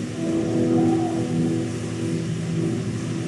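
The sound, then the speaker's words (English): A car engine revs loudly and steadily as the vehicle pulls away, its low droning hum holding strong for a few seconds with no voices present. “Shouted at him, abused him, embarrassed him, and forcefully took the car away.”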